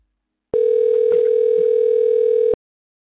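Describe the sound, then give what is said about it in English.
A single steady telephone ringback tone of an outgoing call to a man sounds for about two seconds, a clear, loud electronic purr heard alone over a phone line, then cuts off into silence. “Let's see if he answered the phone.”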